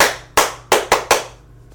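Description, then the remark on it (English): Five sharp, loud hand claps in an uneven rhythm: a single clap, a short pause, then four quicker ones, with no talking over them. “Because if we were, we would have clapped like this.”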